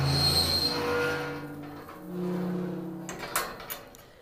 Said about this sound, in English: A little more noise for you. I'm going to open some gates. Some Halloween noises for you there.